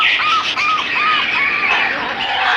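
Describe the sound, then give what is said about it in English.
Two lovebirds squawk loudly and nonstop, a harsh, shrill chatter with repeated rising-and-falling screeches running through the whole stretch, with no voices. “Well, you see, we have two lovebirds, and, it seems that, well, I thought that lovebirds were, supposed to, love?”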